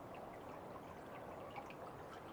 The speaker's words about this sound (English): Suddenly, you feel water. And you understand that you have found a small stream.